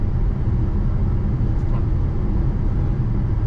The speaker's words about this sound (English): I mentioned the Kaimais, which is a terribly dangerous road, so I'm just gonna into the Kaimais, up a hill, passing a truck. How does that go?